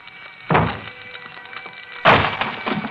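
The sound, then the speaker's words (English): Firemen strike the locked wooden door of a burning apartment with two heavy axe blows about a second and a half apart. Each lands with a loud thunk and a splintering crack, with no voices present. “Outside its locked door, firemen swing their axes at.”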